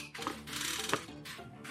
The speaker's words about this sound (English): Alright, so the Joker was once again drawn, so I will shuffle the deck.